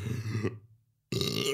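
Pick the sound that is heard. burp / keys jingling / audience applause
burp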